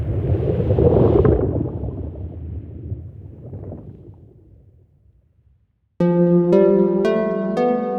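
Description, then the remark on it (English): A field recording of a polluted urban waterway at a Superfund site in New York: a heavy, low rumbling wash of water and motor noise that slowly fades to near silence, then music with bright struck, ringing notes begins. “This Soothing Sounds of Superfund Sites project is something we're in the middle of, so we're making new recordings in some new locations.”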